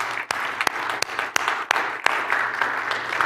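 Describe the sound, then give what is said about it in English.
A crowd applauds the volunteers steadily, a dense wash of many hands clapping with a few sharper, louder claps standing out in an irregular pattern. “I just kind of, as I was going through today, talking to all the volunteers that make this happen, can we just give them a round of applause and say thank you?”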